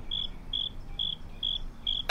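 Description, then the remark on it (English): A single cricket chirps in five evenly spaced, high-pitched bursts over a quiet background hiss, ending with a brief sharp noise at the very end. “There's just a cricket.”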